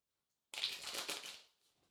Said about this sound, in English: So just take a moment, drop in. Connecting to the cards by listening to the sound of them being shuffled.